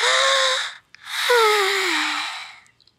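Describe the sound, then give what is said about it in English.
A long, breathy yawn: a short airy intake, then a drawn-out exhale with a voiced tone sliding downward, heard close and fairly loud with no talking. “She yawns and stretches.”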